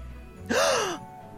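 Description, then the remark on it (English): A group gasps in surprise: a single sharp, breathy gasp sliding into a brief voiced "ooh" that falls away after about half a second, moderately loud against quiet surroundings, with no talking. “The group all gasped in response.”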